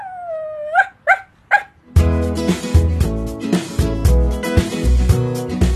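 A dog gives a drawn-out whine, then three quick, high-pitched barks, and bright music kicks in right after and carries on to the end.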